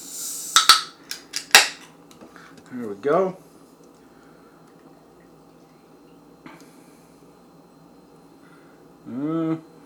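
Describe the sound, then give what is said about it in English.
A couple of sharp cracks and a hiss as a beer can is opened, followed by a steady low pour of a light orange beer with an orange head into a glass, with a man briefly speaking partway through. “So let's go ahead and get this open, get it into a glass, and see how it is.”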